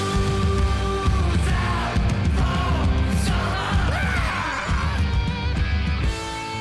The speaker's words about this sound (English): Do it. Screaming. Do what? Let's do it. Screaming like that. Yeah. But do it yourself.